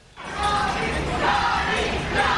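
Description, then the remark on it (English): A crowd cheers for Johnny Depp outside the courthouse in Fairfax, Virginia, after a jury verdict in his defamation lawsuit against Amber Heard: a dense, steady roar of many voices that swells up after a brief quiet start and stays loud throughout. “Cheers of Johnny erupting outside the courtroom, while inside Amber Heard listens stoically as count after count went against her.”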